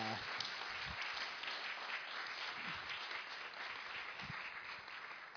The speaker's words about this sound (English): I don't have other words to say other than, guys, give this guy your attention, please, and give him a huge round of applause as he comes up.